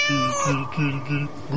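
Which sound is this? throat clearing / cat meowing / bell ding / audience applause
cat meowing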